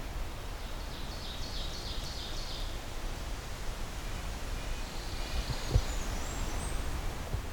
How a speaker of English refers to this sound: It's got a pine warbler as well, which was just doing its trill.